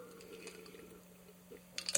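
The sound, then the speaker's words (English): Quiet sipping and swallowing sounds of someone drinking water over a steady low hum, with a short cluster of louder wet, clicky noises near the end, like a gulp or a glass being set down. “And I've mentioned in passing, sorry, I have to drink water.”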